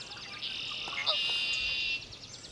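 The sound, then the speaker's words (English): A dawn chorus of marsh birds at Great Meadows National Wildlife Refuge in Concord, Massachusetts, around 5 a.m. on a May morning in 2014 as sunlight floods the sky, with a dense, steady high-pitched trilling and buzzing and a few brief chirps mixed in, and no voices. “And as sunlight starts to flood the sky, the birds' chorus brings a smile to David Sibley's face.”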